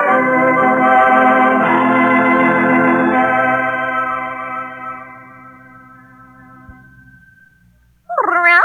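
A cat gives a long, drawn-out meow that slowly fades over several seconds, followed by a brief pause and then a sharp, louder meow at the very end. No one speaks.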